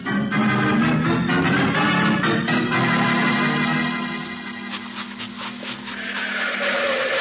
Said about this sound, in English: Hey, what happened? You hear that? Yeah. Yeah, I hear it, Jake. Car starting. A car starting.